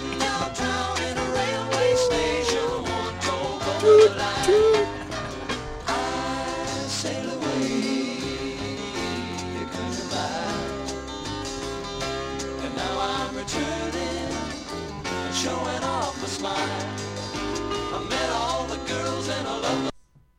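The closing stretch of a 1970 folk rock song, a full band playing steadily with a sung melody on top, holding a constant loud level before stopping abruptly at the end.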